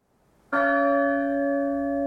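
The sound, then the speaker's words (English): The Great Bell is struck once after a brief near-silence, its loud, deep tone ringing on steadily with rich overtones and no voices; its peals are separated by a long pause of about 30 seconds. “The peals of the Great Bell are separated by an ominously long pause.”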